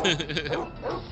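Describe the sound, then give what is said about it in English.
A dog barks in a quick run of sharp, loud woofs lasting just over a second. “Where did this dog come from?”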